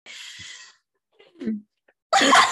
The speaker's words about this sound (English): I'm so sorry. You can cough. I just coughed, so.